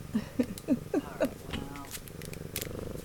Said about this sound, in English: kitty Desi is here. She's rubbing all over the mic.